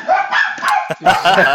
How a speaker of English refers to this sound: Oh, some very excited dogs have decided to guest star on this episode.